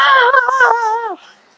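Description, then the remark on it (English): A single voice imitates a crowd screaming and yelling at a celebrity's arrival, with one loud, sustained high-pitched wail that holds for about a second, then drops in pitch and trails off into a faint breath. “she looked back because everybody started screaming and yelling, ah!”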